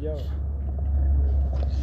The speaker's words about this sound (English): What's that, helicopter?